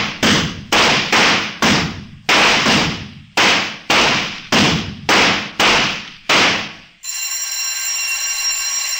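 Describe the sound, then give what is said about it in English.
Rapid string of about eleven loud, sharp pistol shots fired at a steady clip at a shooting range in the second half of a rapid-fire course, each with a brief echoing decay, followed by a sustained electric bell ringing. “Second half of rapid fire, load and lock. Fire on third bell.”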